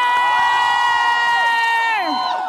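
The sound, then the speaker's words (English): A crowd at a rally cheers loudly and continuously after a call to cheer for Senator Schumer and for trans people who have had abortions, with one high, sustained whooping voice riding on top before it trails downward near the end. “So she explains that we need to cheer for trans people who have had abortions.”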